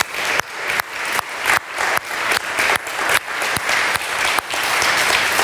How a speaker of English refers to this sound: Happy Mother's Day. Moms, we love you. Let's clap. Let's clap for our moms, right?